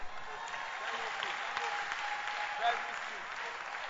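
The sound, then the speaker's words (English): An audience applauds weakly and steadily throughout, the scattered hand claps merging into a continuous, moderately quiet wash of sound with no standout voices. “Your hand clap is weak.”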